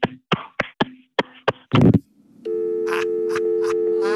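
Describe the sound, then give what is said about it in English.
A quick run of sharp thumps and a rough crackling burst, then a steady, continuous telephone line tone drones on to the end after the call was hung up, with a couple of faint noises over it. “I think your ass meat hung up the phone.”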